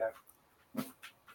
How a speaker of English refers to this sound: Oh, sorry, my dog just came into the room. Excuse me a moment while I put my dog begging for food out. Come on, dog.